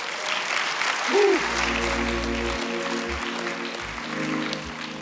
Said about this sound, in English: Give the Lord a hand clap for that.